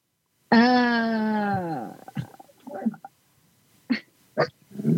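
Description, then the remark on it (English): Two dogs: one lets out a long, loud, strained, angry growl that sinks in pitch, followed by scattered softer noises and two short, sharp barks. “Dogs are barking.”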